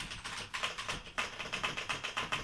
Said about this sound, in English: Go ahead and punch that into the keyboard there.